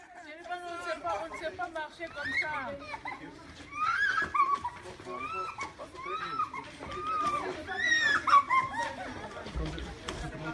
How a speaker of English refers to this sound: That audio is very hard to listen to. Children that survived the terror attacks, crying and screaming.